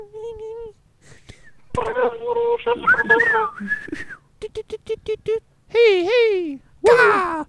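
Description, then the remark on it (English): A person imitates a bird call, moving from steady whistled tones to a quick series of short chirps and finishing with loud, warbling swoops. “Do a bird noise? Impression.”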